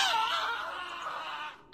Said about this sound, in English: We have the Wilhelm scream on the soundboard, don't we?